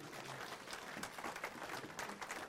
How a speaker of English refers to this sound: Congratulations. She passed her bar exam today. Not her bar exam. She's now a full-fledged nurse. Congratulations. Yeah, give her a round of applause.